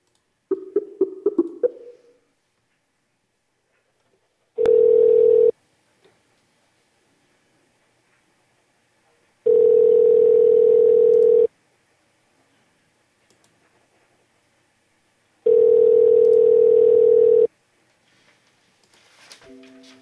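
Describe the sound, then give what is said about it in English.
Telephone tones while a call is placed to a seller found on Facebook who is selling a boat: three loud, steady mid-pitched tones about two seconds each, separated by long silences, with brief clicks and beeps at the start and end. “So we're going to go ahead and call some Facebookers.”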